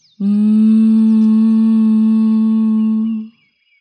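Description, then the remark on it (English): A single steady, closed-mouth hum like a bee's buzz, made while exhaling after a deep breath in through the nose, with the ear canals gently closed by the thumbs. It is held at one low-to-mid pitch for about three seconds and then fades out. It is loud and even, with no talking. “Now take a deep breath in through your nose and exhale, humming with your mouth closed like a bee.”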